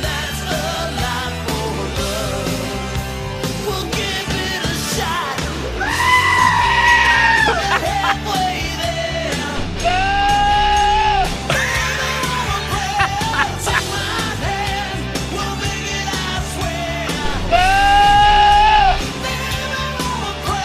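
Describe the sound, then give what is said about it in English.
Loud, full-band rock music plays while goats bleat in long, wavering cries timed to the melody, as if singing along. Three prominent bleats stand out above the instruments. “Here is …, one of my favorite … songs, with a bit of help from goats.”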